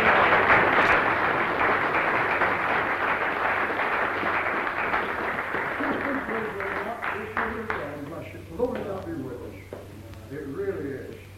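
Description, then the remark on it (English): A crowd applauds a girl introduced as the eldest, in a dense, steady wash of clapping that gradually thins out, giving way to a voice speaking as the applause fades. “Give her a clap then.”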